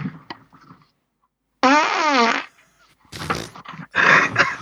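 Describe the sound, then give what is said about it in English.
Loud farts blown right into a microphone: a long, squeaky, wavering one, then short rough sputtering bursts, preceded by faint low rumbles. Nobody speaks. “Why does my mic stink of shit?”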